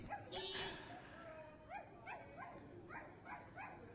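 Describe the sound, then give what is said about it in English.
A woman on all fours and on a leash on a public street imitates a puppy, starting with a drawn-out whine and then letting out a quick run of six or seven high yips and barks, fairly loud over a steady noisy background. “Making puppy noises. Making barking puppy noises.”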